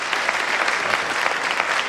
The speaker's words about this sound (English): How many of you have been here before? Applaud if you have been here before.